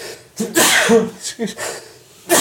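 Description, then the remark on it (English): A single loud sneeze bursts out with a sharp, hissy explosion, followed by brief breathy vocal sounds and another short burst near the end. “Excuse me. Gesundheit.”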